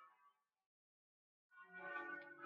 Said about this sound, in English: Yeah, and as you're speaking, I'm hearing, are those church bells? Yeah, sorry. That's okay. It gives a wonderfully Italian atmospheric sort of color to this interview.